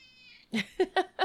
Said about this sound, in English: Do you hear this cat?